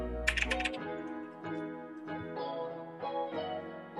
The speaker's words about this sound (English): Typing on a keyboard? Correct.